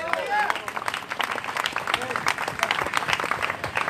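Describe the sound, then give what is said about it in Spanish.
An audience bursts into sustained applause, dense overlapping claps at steady loudness, with scattered voices and cheering mixed in throughout. “Órrelo con un aplauso.”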